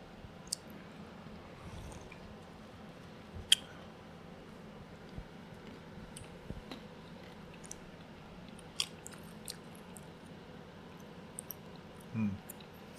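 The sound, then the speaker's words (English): Quiet chewing of something crunchy, with irregular sharp crackles and clicks scattered over several seconds and a low mouth rumble underneath, no talking. “It tastes the same. It's a little earthier. And crunchy.”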